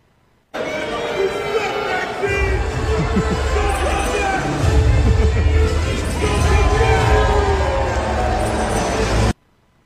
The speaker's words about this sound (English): Rhea Ripley and Zelina Vega respond to viral video of Maxine Dupri getting booed at a WWE live event. I'm going to play the video, and then let's have a little discussion.